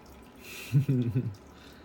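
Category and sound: household object, aquarium water trickling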